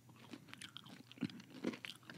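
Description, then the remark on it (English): Chewing, close to the microphone, of a crunchy caramel candy like a crunchy Snickers or a Twix in crispy ball form, with several irregular crisp crunches and softer mouth sounds over about two seconds, fairly quiet and with no talking. “It's like a crunchy Snickers bar.”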